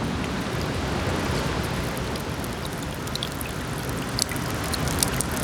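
Rainwater rolls off the roof of a snack bar onto snow on the ground on a rainy winter day: a steady, dense wash of falling water with scattered sharper drip impacts popping through, constant, with no voices.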